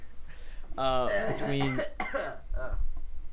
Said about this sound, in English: I'm sorry, I'm coughing.